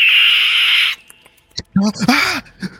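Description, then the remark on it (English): A loud, sustained high-pitched squeal lasts about a second, followed by a few sharp clicks and then chattering, voice-like squeaks and trills from a creature that has just been pulled off someone's face, its legs moving. “You're able to get this thing off of Korus's face, and you see it moving its legs, and you can hear it making squeaking and clicking sounds.”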